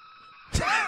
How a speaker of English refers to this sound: The greatest scream in cinematic history. Yeah.